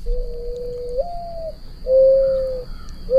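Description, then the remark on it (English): A mourning dove coos in a steady series of soft, hollow, drawn-out notes, the second rising slightly in pitch, heard clear with no talking. “A very young mourning dove sits on my welcome mat every day.”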